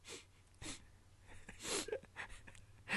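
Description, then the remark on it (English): A person imitates a little nose sniffle: a few short, breathy nasal sniffs spaced irregularly, soft overall, with the last one slightly louder. “Just that little nose sniffling noise.”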